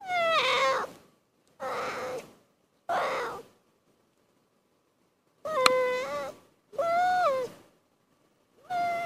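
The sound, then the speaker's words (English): An arctic seal pup calls for its mother in a series of six drawn-out, bleating cries, some rising and bending in pitch, each separated by short pauses. The calls are clear, with no talking. “the sounds that you were hearing it make were it calling for its mommy, but they also make cute noises when they're playing”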